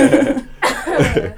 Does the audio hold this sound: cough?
yes